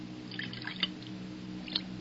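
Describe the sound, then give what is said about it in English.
Brandy is quietly poured into old glasses brought from France, heard as soft trickles and drips with a couple of brighter splashes, over a low, steady background hum. “Now, you may pour.”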